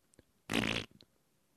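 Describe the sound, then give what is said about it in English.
A single loud fart during a recording level check, a buzzy burst lasting about a third of a second, surrounded by quiet background with a few faint clicks and no talking. “Farts are registering.”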